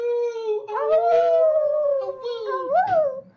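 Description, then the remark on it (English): A human voice imitates a wolf howl, holding one long, wavering mid-pitched note for about three seconds before a final upward swoop and fall, loud and alone. “And other than that, just can I get a little awoo in the chat to say hey?”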